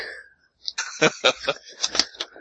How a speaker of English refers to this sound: Anyway... Oh, sorry, coughing everywhere. Sorry.